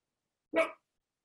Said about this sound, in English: Just waiting for a dog to stop barking.